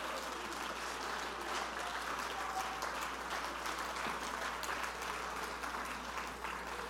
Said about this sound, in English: Something should happen today. I want you to stand to your feet and clap your hands and praise the name of the Lord. Would you do that? Praise the name of the Lord.